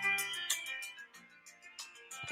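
A song plays through a small phone speaker held up to a microphone, thin and tinny with little bass, sustained tones over crisp, regular percussive hits. No one talks over it.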